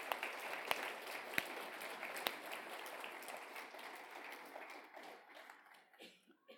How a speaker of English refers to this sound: I think a round of applause, I think it's called for.